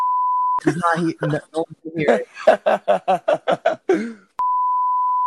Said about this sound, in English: All those beeps. All that stuff.